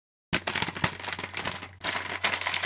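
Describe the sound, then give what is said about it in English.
Loud crackling and crinkling of a thick plastic snack bag being pulled open along its butterfly-open seam, a dense stream of sharp snaps with a brief pause before a final burst of rustling. “It is a butterfly open.”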